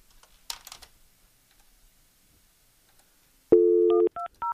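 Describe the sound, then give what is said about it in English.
A soft click, a pause, then a steady phone dial tone gives way to two short, sharp keypad beeps in quick succession as someone is called directly by phone. Clear, with no voices. “We're going to call him directly.”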